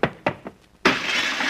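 A window shatters as a man jumps right through it: a few dull thumps, then a sudden loud crash of breaking glass that carries on as a bright, hissing spray of falling shards until the end.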